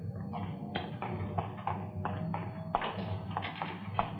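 A printing press running in a print shop: a steady, rhythmic clatter of mechanical clacks and thumps over a low, continuous rumble, moderately loud, with no voices.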